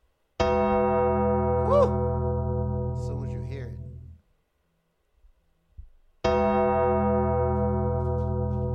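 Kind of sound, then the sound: sound effect, gong strike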